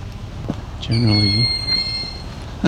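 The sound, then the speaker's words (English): A young Cooper's hawk gives a long, shrill begging scream, a thin whistled tone held for about a second. A lower harsh squawk overlaps the start, and brief sharp calls come before and after. “At this point, I will say is a young Cooper's hawk.”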